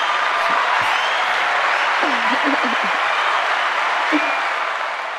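A crowd applause sound effect: steady, dense applause from a crowd, a broad hiss of many hands clapping at once, with a few faint voices murmuring underneath as it continues without pause.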